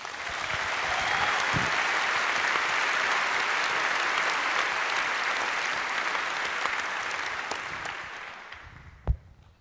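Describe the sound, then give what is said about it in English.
An audience applauds steadily for about eight seconds at an event where Slavoj and Yanis share a stage for the first time, a dense wash of clapping that holds level before gradually thinning out, ending with a few scattered final claps. “So a big applause again.”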